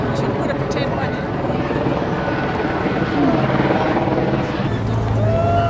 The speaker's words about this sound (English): And we have the helicopter flying overhead, so not long now.